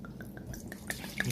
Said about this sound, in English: About to pour me another sangria.